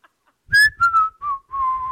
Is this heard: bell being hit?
no